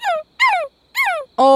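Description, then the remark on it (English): A voice imitates a dog's sad whimpering cries: three short, high, falling whines separated by brief pauses, then a fourth steadier, sustained cry. Fairly loud, with no talking. “Thinks that there's sad cries of love, and I need you to show him what it sounds like.”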